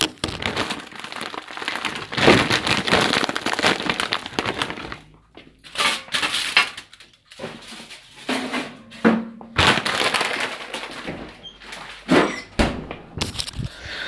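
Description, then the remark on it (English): Loud crinkling and rustling of a plastic bag as a piece of frozen chicken is pulled out, in bursts broken by short pauses, with faint knocks and shuffles. No one speaks. “Hold on, let me take a piece out.”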